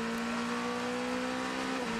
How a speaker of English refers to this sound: So the wonderful sound of the CrowdStrike 04 car making its way up onto the banking in the background.